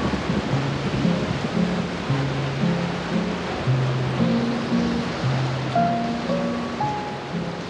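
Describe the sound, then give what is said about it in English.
A steady, dense roar of hurricane wind and heavy rain fills the whole stretch without letup, while soft, sustained low musical tones drift underneath. No one speaks. “And weather's going to be rough for the next day or two as the hurricane touches down just to the north, causing strong winds and rain all through the night.”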